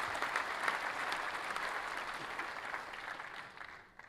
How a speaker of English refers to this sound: Did you know you were going to get an applause today? I did know I was going to get an applause like that. That's wonderful.